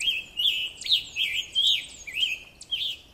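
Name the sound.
scarlet tanager song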